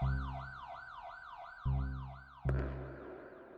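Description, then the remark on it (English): A police car siren whoops in fast, repeating rising-and-falling cycles as the car rolls past an alley entrance in a city, loud, over a low droning rumble, with two sharp thuds partway through and no one speaking. “A cop car rolls by the alley entrance just as I go down, and they don't see me.”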